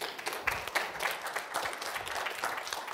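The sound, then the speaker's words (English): Steady applause from an audience for a woman who has just spoken, many hands clapping in a dense, continuous patter that stays fairly even throughout, with a few sharper individual claps standing out. “Give her a hand.”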